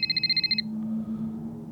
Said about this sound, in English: I call again and no answer, and then my phone rings.